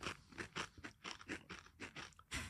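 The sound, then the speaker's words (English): Someone crunches through a Pringle crisp topped with squirty cream, chewing in a quick, steady run of about eight sharp, crackly bites, loud and dry, with no talking. “Sour cream. Pringle and squirty cream.”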